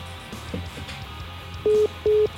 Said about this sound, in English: There he goes, boop, dude. Boop, boop. Okay, phone hung up. You heard the beeps, right? Right. Yeah, it's cool. We got a new system here.